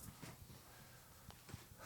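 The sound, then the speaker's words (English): Someone blows their nose in a few short, breathy honking bursts, fairly quiet, with brief pauses between the blasts and no talking. “He's got to blow his nose.”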